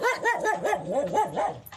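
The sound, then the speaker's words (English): A dog barks in a quick, continuous run of about six loud barks with a wavering, almost yowling pitch, and no voices around it. “Basically, what happened was we have a dog who does predictions.”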